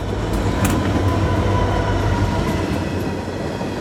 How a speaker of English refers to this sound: Do you take a moment to soak it in when you're on the train, kind of look as it's moving? You feel the breeze in your hair. You're just gliding, and it's smooth.